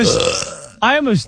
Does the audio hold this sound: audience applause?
no